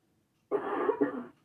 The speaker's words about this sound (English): I'm sorry, y'all. And I'm so sorry. I feel like I've given you my coughing fit because I'm no longer coughing and now you are.